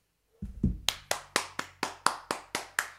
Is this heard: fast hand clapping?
yes